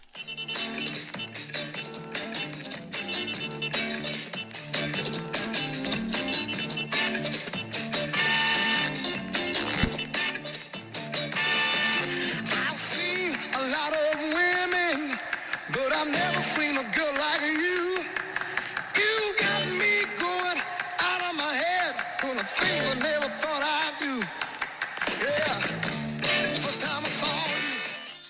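An upbeat rock-and-roll song plays loud and steady, with a driving rhythm and sharp handclaps; a sung vocal line enters partway through over the full band.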